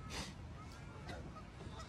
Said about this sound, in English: That's a duck. That's a duck in the background. There's a little duck.